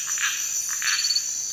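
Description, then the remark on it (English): A dense chorus of tree frogs singing together in the Brazilian Amazon rainforest at Camp 41, with repeated bursts of calls rising over a steady high-pitched trill, loud, amid continuous forest ambience. “A chorus of tree frogs sings.”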